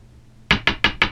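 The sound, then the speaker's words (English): A gavel bangs four times in quick, even succession, calling order in the court for the new Todd Glass Court Show segment. Each strike is a sharp, loud wooden crack with no voices around it. “Order in the court.”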